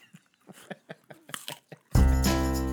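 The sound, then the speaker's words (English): Crunching of someone biting and chewing an apple, a quick irregular series of crisp snaps, before loud music suddenly starts and takes over. “Taking us out with some apple crunches.”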